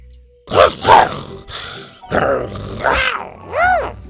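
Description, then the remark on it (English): A voice imitates a dinosaur growling: a series of rough, throaty growls and grunts in uneven bursts, ending in a rising and falling snarl, loud with no other sound. “with the tone of a fed-up mother, he growled and gave Scoot a push with his long red tail”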